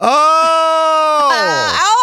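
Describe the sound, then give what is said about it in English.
A single loud, drawn-out goat bleat lasting about two seconds, nasal and quavering, its pitch sagging and wobbling toward the end before rising again. “If I say, hey, I'm not that great at this, but let's talk to the goat.”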